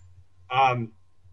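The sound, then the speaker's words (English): A timer buzzer goes off to signal that a speaker's time is up: a single short, harsh buzzer tone sounds for under half a second, rich and nasal, then cuts off over a faint low hum. “It's time up already? Like, it just buzzed me?”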